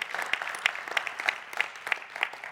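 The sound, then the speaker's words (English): An audience claps in unison, a steady beat of about three sharp claps per second rising above a fainter wash of scattered applause, with no voices standing out. “You clap.”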